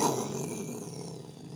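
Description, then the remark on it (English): A voice imitates an explosion: one rough, growling burst of breathy noise that starts loud and slowly fades over about a second and a half, with no words. “That was my explosion sound effect.”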